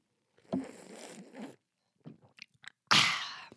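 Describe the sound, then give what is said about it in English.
A voice imitates someone noisily sipping coffee: a long, airy slurp, a few soft lip smacks, then a sharper, louder slurp, with no talking. “Which means that he sat down next to me and was like sipping his coffee. Hold on, let me give you a sound effect to go with this.”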